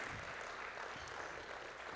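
An audience at Passion Life Church claps for the Lord during a morning service, a dense, steady wash of applause, many hands blending into a continuous crackling roar that holds an even loudness throughout, with no voices standing out.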